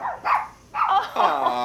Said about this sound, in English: Up next, we have a fuzzy friend here with us. Yes, we do. A rescue chihuahua that apparently knows Morse code by barking.